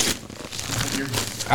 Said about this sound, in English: Wrapping noises and effects.